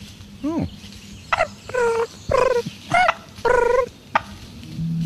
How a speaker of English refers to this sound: That's an actual turkey purring. There you go.